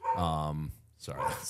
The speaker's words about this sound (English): My chocolate lab's barking at me outside.